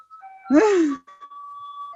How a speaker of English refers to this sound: So guys, the ice cream truck is bothering us again.